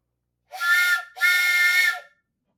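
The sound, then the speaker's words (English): A train whistle sounds two close, loud blasts, a short one and then a longer one, each a breathy chord of tones with nothing else around it. “Well, anyway, I'm going to blow this train whistle for literally no reason, so.”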